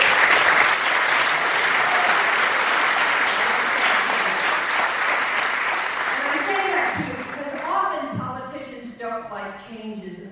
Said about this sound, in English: And when this was getting off the ground, he was the only politician in the state of California who pushed it, who supported it, and made it happen. So he really does deserve a great round of applause.